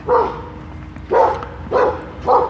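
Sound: dog barking in backyard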